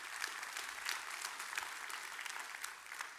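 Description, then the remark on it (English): Steady applause from a large gathering, a dense patter of many hands clapping at once, sustained and fairly even throughout with no voices standing out. “You can clap.”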